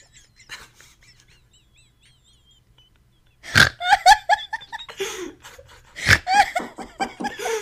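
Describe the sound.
A voice imitates a squeaking rubber chicken, starting with faint, high chirpy squeaks, then breaking into loud, strained squawks and squeals in rapid, uneven bursts, without speech.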